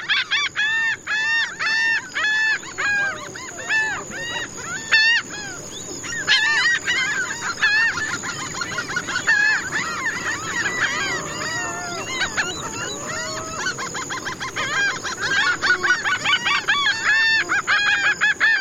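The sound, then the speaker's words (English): A dense chorus of coastal birds in Mexico calls over one another continuously: harsh honking squawks, rapid chattering and repeated arching whistles, with no talking. The soundscape was recorded by Antonio Celis Murillo for an album. “Antonio Celis Murillo recorded this soundscape for the CD ….”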